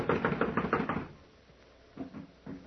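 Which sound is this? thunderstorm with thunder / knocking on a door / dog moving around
knocking on a door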